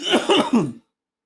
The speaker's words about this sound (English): Are you all right, bro? I think so. You done coughed up your kidney, your spleen.